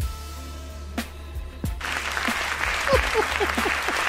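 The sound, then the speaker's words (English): A few isolated sharp claps ring out, then a burst of steady group applause for a listener's haiku swells and carries on to the end, with faint voices mixed in underneath. “Not just snaps, but applause.”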